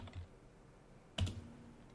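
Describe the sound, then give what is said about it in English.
Quiet typing on a computer keyboard: one crisp keystroke clack stands out midway, with a few fainter taps around it against a low background hush. No one speaks. “I'm typing.”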